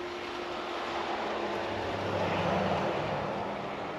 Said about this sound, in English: We have a truck coming up the street. It's snowy. This guy looks like he's flying.